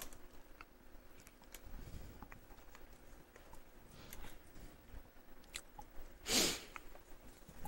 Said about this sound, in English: He pulls out a piece of paper.